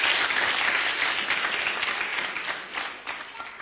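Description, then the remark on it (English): A church audience claps steadily for the people sharing out items, a dense, sustained patter of many hands at moderate loudness that tapers slightly toward the end. “Clap for them so that you can share them out.”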